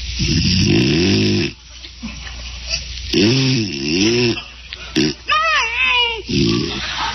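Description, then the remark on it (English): A man snores loudly in bed, with three long rattling snores separated by short pauses, the last one breaking into a higher wavering, whistling snort. “Snoring Dilemma”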